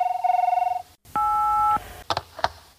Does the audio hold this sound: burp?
no